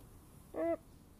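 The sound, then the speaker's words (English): A single brief, tonal call from Neo, a pet bird, rings out once outside, moderately loud, over a faint, steady outdoor background with no voices. “I even have my bird Neo out here.”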